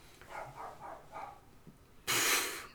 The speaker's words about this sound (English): I apologize, my dogs are barking because they know we're recording.